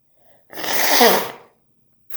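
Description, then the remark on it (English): A single loud, breathy sneeze during allergy season bursts out after a short quiet moment, a broad hissing blast that swells and fades within about a second, followed by silence. “Excuse me. So I have to blow my nose.”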